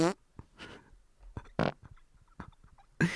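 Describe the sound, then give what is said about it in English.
A voice makes a string of wet, sputtering fart noises with the mouth, several short raspberry-like bursts separated by brief pauses, moderately loud. “give Mitchell a big ol' fuck you for me and a couple of wet farts because it'll make me smile”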